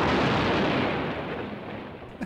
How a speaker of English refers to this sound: She finds a cabinet drawer with her name on it. And when she pulls it out, she triggers an explosion in the house.